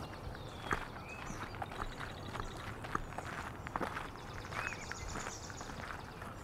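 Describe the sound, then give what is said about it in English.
Steady footsteps crunch along a path through a marsh at an even walking pace, while birds, including a common yellowthroat, yellow warbler, gray catbird, red-winged blackbird and indigo bunting, chirp and sing faintly in the background. “Let's head down this path through the marsh here.”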